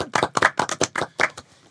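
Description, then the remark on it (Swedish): A short burst of hand clapping, roughly eight sharp claps in a quick, slightly uneven rhythm, like a few people applauding together briefly. No voices accompany it. “Nu klappar vi alla.”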